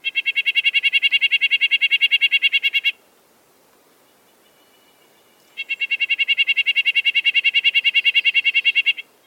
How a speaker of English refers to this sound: One thing to note, the bird that Hunter references is a nuthatch. This is what the vibratory call of a red-breasted Californian nuthatch sounds like, thanks to the Cornell Guide to Bird Sounds.